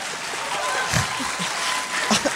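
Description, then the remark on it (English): A crowd applauds steadily for a couple of seconds, a dense wash of clapping with a few louder hand claps poking through and faint murmuring voices underneath. “A round of applause for that sentiment.”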